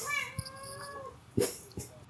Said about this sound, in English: Your cat is... Oh, he's just so loud.